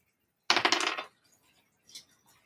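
Dice rolled in a tabletop game clatter across a hard tabletop in a quick burst of sharp rattling clicks, then settle with a couple of faint taps and one small knock near the end.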